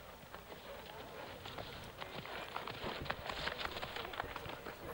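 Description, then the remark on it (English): Rapid hoofbeats clatter in a dense, irregular rush as two jousting riders on horses gallop towards each other, the pounding growing busier and louder toward the end. “Galloping towards each other.”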